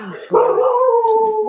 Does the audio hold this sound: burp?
no